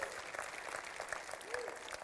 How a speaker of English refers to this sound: It stands for the unveiling of God, and you're free to applaud if you want to, because we're applauding the King.